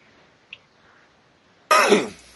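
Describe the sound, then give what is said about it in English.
A single harsh, raspy winter cough bursts out loud near the end, after a stretch of near silence, then quickly trails off. “I'm gonna have to be quicker on muting my mic so I can like get my winter cough out of the way.”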